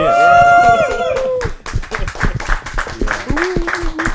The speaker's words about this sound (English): Yeah. So, I think a round of applause, I don't know.